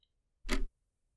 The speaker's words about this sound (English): He checks his digital watch. It's blue, with a little whale on the front. The seconds are still ticking away.